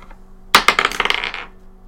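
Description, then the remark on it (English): Several dice are rolled onto a table to determine damage, a quick burst of bright clicks and rattles that bounce and settle within about a second. Fairly loud, with no talking. “All right, let me roll all these weird dice.”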